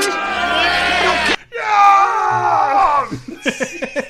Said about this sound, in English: The first person to start yelling in the background is